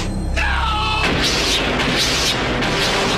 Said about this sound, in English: Gunshots.